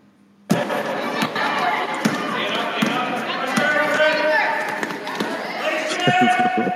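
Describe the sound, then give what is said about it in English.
A basketball game in progress: a ball thumps against the floor in sharp, irregular bounces over a steady wash of crowd noise and indistinct voices, starting abruptly after a brief quiet moment. “Basketball game.”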